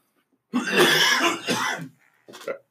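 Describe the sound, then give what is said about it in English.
A man coughs, a long rough hacking burst followed by a shorter second cough after a brief pause, with no talking during the fit. “Can't get rid of his cough.”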